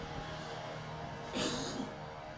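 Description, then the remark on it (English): A single sneeze bursts out partway through, a short, hissy, breathy blast over a steady low background hum, then fades quickly. “Bless you.”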